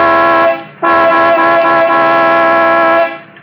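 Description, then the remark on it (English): A loud truck horn honks twice at something blocking the highway: a short blast, a brief gap, then a longer sustained blare of about two seconds. The tone is brassy and rich, with no talking. “I'll give it the horn.”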